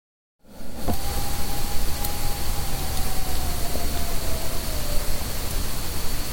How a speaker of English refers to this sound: Did you hear that? Was that a siren? No, that was not a siren. Again, just a short clip, but that was that same howl going off again. Mm-hmm. Well, not the same one. Whatever made the other howl, presumably, howled again.